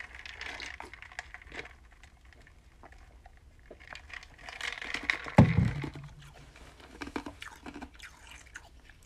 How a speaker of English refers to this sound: Oh, yeah, that was me chewing my ice.